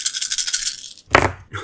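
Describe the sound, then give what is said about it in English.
A handful of dice rattles briskly for about a second, a rapid clatter of small clicks, then spills out with a louder clattering tumble and a brief final knock. “Yeah, it's a lot of dice.”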